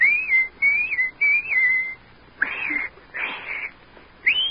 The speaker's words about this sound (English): And anytime you need me, you know, just whistle like this.